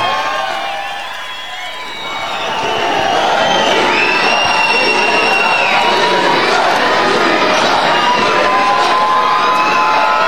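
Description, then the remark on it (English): A packed concert crowd cheers for an encore, a dense, loud roar of shouts and high whistles that dips briefly at the start, then swells and stays sustained throughout. “If they don't come out, they'll tear the place apart.”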